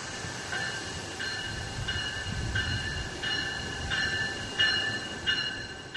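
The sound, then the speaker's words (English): An electric South Chicago train, number 318 to Millennium Station, rolls past with a steady low rumble and a rhythmic series of bright metallic wheel tones recurring about every half second, no voices present. “describes growing up near the Metro tracks in Chicago's Woodlawn neighborhood and asked us to play the soothing sound of the train passing by.”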